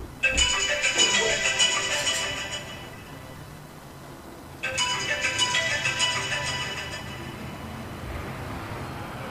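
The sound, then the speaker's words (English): A phone ringtone plays alone: two bright, melodic rings a few seconds apart, each starting loud and fading out, with a steady low background hum underneath. “come get this phone, bro.”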